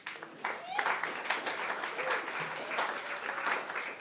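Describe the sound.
An audience claps steadily for about four seconds as two people are invited up to talk about mission, a dense, even patter of many hands at moderate loudness, with faint voices murmuring underneath.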